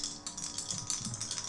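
Dice rolled with disadvantage clatter and rattle across a hard tabletop in a quick run of sharp, clicking impacts, moderately loud, with no voices over the sound.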